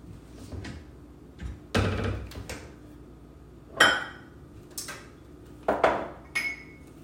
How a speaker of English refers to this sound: okay, I'm gonna open a bottle of wine. And I'm, oh shit, maybe I'll pour it for myself.